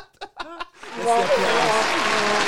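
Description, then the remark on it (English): Three short voiced chuckles, then an applause sound effect: a burst of loud, dense applause that swells in and holds steadily to the end, with faint cheering voices mixed into the clapping. “Can you hear the applause?”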